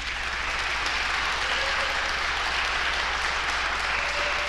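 A crowd claps steadily for several seconds, a dense, even wash of many hands applauding at once in a large room, sustained without pause.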